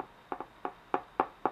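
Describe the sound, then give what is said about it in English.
Soft knocking on a door: six light raps, a quick double knock followed by four evenly spaced single taps, each a short dull thud with no voices. “A gentle rap, rap, rapping upon my podcast door?”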